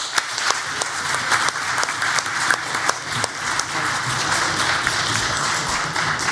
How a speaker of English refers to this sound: Audience, please join me in another round of applause for our debaters.